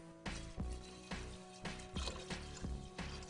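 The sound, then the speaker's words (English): Spring water pours steadily from a container into a bowl of sea moss, a continuous splashing trickle with small rhythmic surges as the stream shifts, lasting a few seconds without any talking. “All right, so I'm gonna add some more.”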